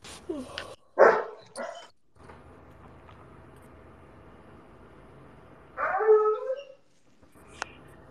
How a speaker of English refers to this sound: What are you doing to that dog, bro?